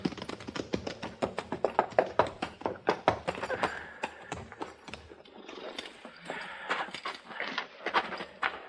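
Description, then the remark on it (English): Horses' hooves clip-clop in a quick, uneven clatter on a hard floor as several horses are put into a barn, the steps thinning out and echoing as they come to a stop inside. “We'll put our horses in the barn here”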